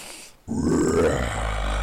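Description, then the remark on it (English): After a short pause, a loud, drawn-out burp-like croak from a human voice rumbles low and gravelly for over a second, steady in volume with a slight rising pitch. “But it sounded like Barney taking a burp, and I don't mean that Barney from The Simpsons, I mean the purple Barney.”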